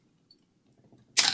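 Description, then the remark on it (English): Carbonated water fizzing in a glass during a blind taste test: faint, scattered crackling builds for a moment, then a sudden loud, bright hiss of bubbles bursts out. No voices are heard. “Ooh, it's bubbling. Are you going to tell me what this is? Is it a carbonated one? It's carbonated.”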